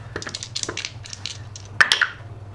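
impact, dice rolling

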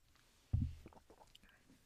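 human body sound, drinking water

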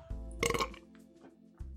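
human body sound, burp

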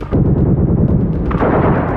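sound effect, gunshots

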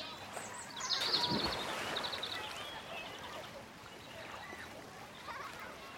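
nature, splashing water

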